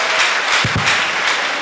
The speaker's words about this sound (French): Applaudissons ensemble. Let's clap the Lord.